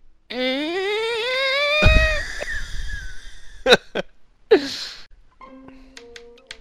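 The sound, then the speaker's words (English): A door swings shut: a long rising creak ends in a heavy low thud, followed by a couple of sharp latch clicks, a brief rustle and some faint tonal beeps. “I still got the door open. Sorry. I'll just close it now.”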